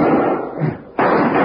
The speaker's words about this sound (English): Out the door, Jingles. All right, close it.